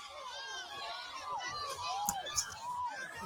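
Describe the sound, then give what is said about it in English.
A crowd screams and yells in overlapping, high-pitched shrieks that rise and fall in pitch as a man starts swinging a chair in a fight. Two sharp bangs cut through the commotion near the end. “I mean, listen to the screams when he first started swinging the chair.”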